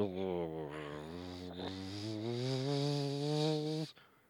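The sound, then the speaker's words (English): A voice imitates a possum snoring as it drops motionless, with one long, unbroken, droning tone that lasts about four seconds, wavering and creeping upward in pitch, strong and steady before cutting off abruptly. “He drops motionless. Snoring.”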